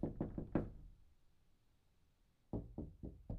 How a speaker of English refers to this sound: Yep, there came the second series of knocks.